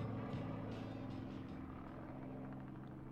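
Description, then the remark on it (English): A steady, droning helicopter engine from a video being played, with a low, humming rumble holding at an even level throughout, with no one speaking. “How scared would you be being a helicopter pilot?”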